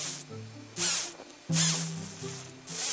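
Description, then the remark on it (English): A tiny walnut sphinx caterpillar gives its defensive hissing whistle: four loud, airy, high-pitched bursts that repeat about once a second over a faint low hum, with no one talking. “Here's a tiny walnut sphinx caterpillar doing its best to sound big and tough.”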